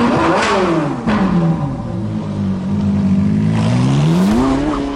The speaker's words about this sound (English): Let your motors run.